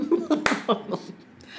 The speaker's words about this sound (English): I'm going to do a slow clap for her.